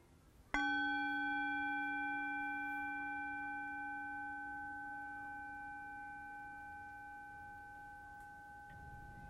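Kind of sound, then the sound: signal or alarm, meditation bell ringing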